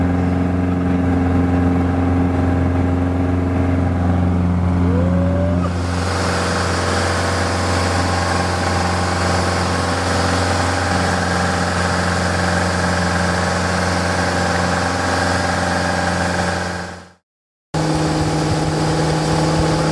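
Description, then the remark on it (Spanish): A small airplane's engine drones loudly with strong steady low hums, then swells into a fuller, rougher roar as power comes up for takeoff in the rain, rotating at about 65 to 70 knots, briefly cutting out near the end. No one speaks. “Y mis amigos, en este momento estamos despegando así.”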